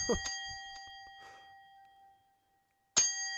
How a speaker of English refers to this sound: Cracking bell work. Oh, wiggly bell.